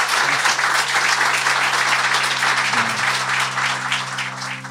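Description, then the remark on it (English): A crowd applauds David Crane in a steady, dense wash of clapping that stays loud throughout, with a low sustained hum running underneath. “Ladies and gentlemen, please give a big round of applause for David Crane.”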